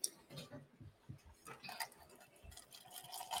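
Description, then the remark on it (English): Liquor glugs and splashes as it's poured into a glass, a continuous trickle with faint clinks, brief low murmurs in the background. “I'm pouring this shit up.”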